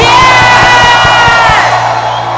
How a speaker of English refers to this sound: And lift up your voice and give the Lord a shout. Yeah. A shout. Yeah. A shout.